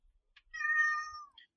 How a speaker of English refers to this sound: Man, someone's cat really objects. That is a loud alligator.